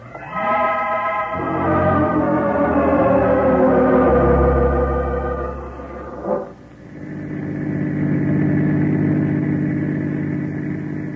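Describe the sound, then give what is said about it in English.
A car engine drones steadily while driving, its pitch shifting as it revs, then a brief bump before it settles into a lower, even hum. No one speaks. “Car radio, Chief. Yeah, I'll take it, Peters. Keep driving.”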